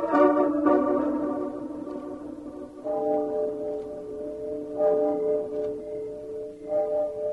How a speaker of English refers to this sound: Did you hear anything? Nothing but the owls and the clock striking midnight.